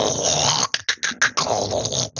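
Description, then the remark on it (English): A person imitates a crab saying its name: a rough, guttural growl from its mandibles broken midway by a quick series of sharp clicks like snapping claws, then the growl rumbles on again, fairly loud, with no talking. “It is a mix of snapping claws and sort of like this guttural growl that's coming from its mandibles.”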